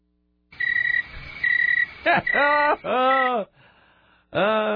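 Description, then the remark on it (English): Crickets chirping in a loud series of bursts, some with a croaking, frog-like tone, with short pauses between calls and no voices. “I'm sorry, that was a long way to go to this stupid cricket thing.”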